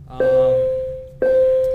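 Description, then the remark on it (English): A bell is struck twice about a second apart, each strike a clear, bright ring with a long sustained tone that slowly fades. It sounds fairly loud. “From that bell.”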